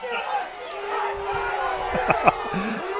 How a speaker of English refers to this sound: Well, I heard one thing that I would love to have a delay button on from the Dakota Wesleyan crowd, but my apologies. Suffice it to say, Wesleyan's crowd not happy with that call.